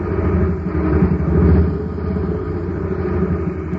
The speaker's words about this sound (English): Not much go in that jet cycle, is there?